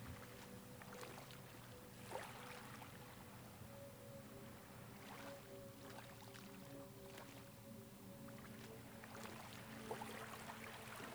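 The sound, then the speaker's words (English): A boat is pushed by someone on bare legs and feet out into the shallow water of a bay, with splashes and sloshing every few seconds over a steady low rumble and hum. No one speaks. “When you push the boat out into the bay, the water feels refreshing on your bare legs and feet.”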